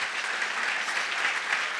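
Steady crowd applause fills the whole clip, a dense wash of many hands clapping at an even, sustained loudness with no voices standing out, given for people who have service-type jobs.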